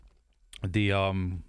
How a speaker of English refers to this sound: For this, the snap is definitely a 4 for me. Every bite's been crunchy.